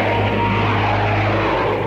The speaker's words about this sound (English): Planes. How low they're flying.